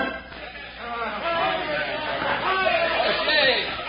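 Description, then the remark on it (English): A crowd of men across the street from the Red Gopher Dance Hall shout and cheer together at news they have just heard, a dense, steady roar of overlapping voices that swells slightly louder toward the end, with no single voice standing out. “Across the street, Mike O'Shea and his friends greeted Bill's news with high shouts and higher hopes.”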